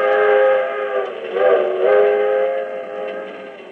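A passenger train, the 20th Century Limited on an overnight run from Chicago to New York, several hours east of Toledo, Ohio, rolls along with its whistle sounding in a long, steady, wavering wail over the running noise, loud throughout, with no voices.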